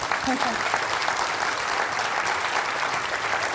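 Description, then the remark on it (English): Steady, dense applause from an audience applauding a speaker's improvisation, a continuous crackle of many hands clapping at an even loudness for several seconds, with a faint murmur of voices underneath. “How people could be so stupid to applaud to this miserable improvisation?”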